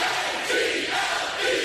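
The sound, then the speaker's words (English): Recorded crowd noise from the Camp Out for Hunger: a dense roar of many voices cheering and shouting together in a steady, loud wash with slight surges in intensity. “This is actually, if you remember the Camp Out for Hunger, we got a whole bunch of crowd stuff. This is our crowd.”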